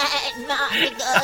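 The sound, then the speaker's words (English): A goat character baas as it talks, in a quavering, wavering bleat that rises and falls through a few pulses, fairly loud, lasting about a second. “Like when it's the goat, it like is baaing every time it's like talking.”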